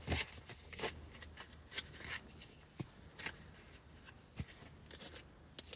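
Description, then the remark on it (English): Quick papery riffles and soft slaps of a deck of oracle cards being shuffled for a tarot reading, a dozen or so brief crisp bursts in an uneven rhythm, fairly quiet with no talking. “Let me shuffle these up.”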